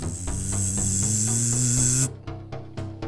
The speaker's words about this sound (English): You see like a faint light coming out of like some seams in him, and some vents are opening up and like letting some steam out. And you hear this like whirring that's just kind of charging up.